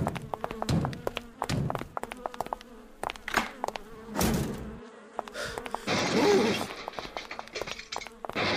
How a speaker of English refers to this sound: What's going on? Bees!